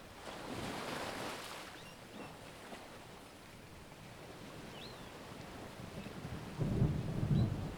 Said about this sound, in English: The sound of the rain falling grounds you in the present moment.